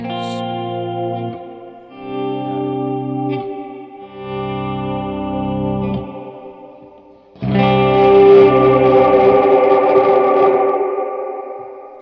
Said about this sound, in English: But here's the ghost mode, which is cool. That gives the reverb trail a little bit of subtle modulation to kind of make it like spooky somehow.